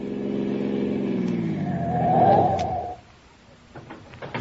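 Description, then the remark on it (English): A car engine roars, its pitch shifting as it speeds up and swells louder, then drops away abruptly to a quiet idle with a few faint clicks as the car pulls off the road by a big billboard and stops. “Car behind is coming fast.”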